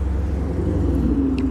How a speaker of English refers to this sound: Also, there are like two cars just kind of like chilling, so that's probably what you hear right now.